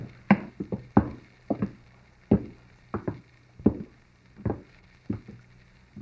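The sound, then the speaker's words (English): Footsteps clatter down a ship's companionway leading to a laboratory aboard a floating laboratory ship: a dozen or so hollow wooden thumps at an uneven, unhurried pace, fairly loud, with no voices. “We're going down this companionway.”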